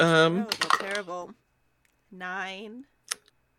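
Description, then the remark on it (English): Dice clatter and tumble in a quick burst of small hard clicks as they are rolled during a tabletop role-playing game, missing the dice tower, partly under a drawn-out vocal exclamation, followed by another voiced sound and one last short click. “You made me miss the dice tower.”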